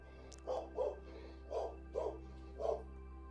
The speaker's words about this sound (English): Your dog's barking because you thought someone knocked at the door.